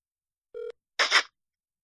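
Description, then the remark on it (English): A phone call rings out over a speakerphone: one short, steady buzzing ring tone, then a brief crackly burst of noise, with silence around them and no talking. “I'm going to call”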